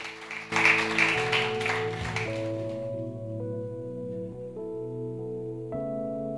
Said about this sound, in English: Come on, give a clap for her, clap for her. She's done well.